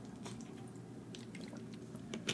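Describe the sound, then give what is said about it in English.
Quiet wet slurping and swallowing sounds of someone taking a sip of water, with small liquid squishes and no talking. “Let me take a drink, sip, water, and get it together.”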